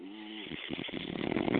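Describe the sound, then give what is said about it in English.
A person snoring, a single long, rough, rattling breath that begins with a nasal hum and grows louder and more buzzing toward the end. No one speaks. “Y'all come in here, a little pretty little bitch snoring.”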